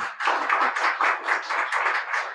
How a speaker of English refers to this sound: Well, thank you both so much. A round of applause, folks.